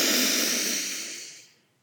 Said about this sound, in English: One more, just like that. Breathe in through the nose.